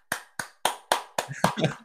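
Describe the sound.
Six or seven sharp hand claps in a steady, even rhythm, with a voice briefly murmuring under the last few claps.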